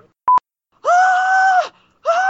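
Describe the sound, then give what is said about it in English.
A voice imitates a pterodactyl screech: a sharp click, then a loud, drawn-out shrill cry that holds steady and drops off, followed by a second screech cut short. “And I basically had a pterodactyl screech on the bus.”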